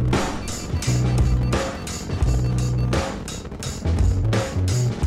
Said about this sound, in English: Mission sequence start. 6, 5, 4, 3, 2, 1, 0. All engine running. Liftoff.